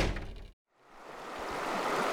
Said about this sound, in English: Potomac sure is roaring today.